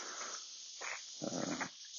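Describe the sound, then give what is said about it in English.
A dog pants in a few short, breathy huffs over a steady hiss of outdoor background noise, during a slow walk with two dogs on a hot day. “We have two puppy dogs right now, but man, we're moving slow today.”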